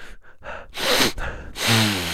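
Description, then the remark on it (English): A few quick little sniffs, then two strong, sharp inhales through the nose after eucalyptus oil is put up both nostrils, loud and breathy, with no talking. “And when you put, I'm gonna put this eucalyptus up both nostrils.”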